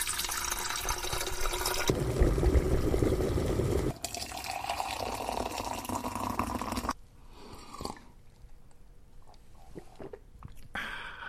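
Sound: water poured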